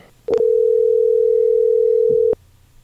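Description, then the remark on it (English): A loud, steady telephone dial tone drones unbroken for about two seconds as an outgoing call is placed, opening and closing with a soft click as the line is picked up and dropped. No one speaks. “We can speculate all we want, but I think we got to, get the expert on the phone.”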